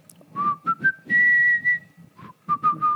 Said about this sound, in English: when I preached on it, I whistled the theme to Indiana Jones.